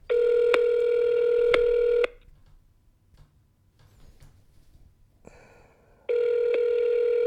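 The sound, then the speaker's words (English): A telephone ringback tone on a call to a grandmother: a steady electronic buzz lasting about two seconds, a quiet pause of several seconds, then the tone starting again. It is loud, with no one speaking. “There it is. It's ringing, baby.”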